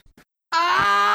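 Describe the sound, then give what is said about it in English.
A man screams in pain as a creature bites his arm clean off: after a couple of faint, brief noises, a loud, strained, sustained cry bursts out abruptly and holds steady without a break until the end. “Blood squirted all over the creature's face as Shay screamed.”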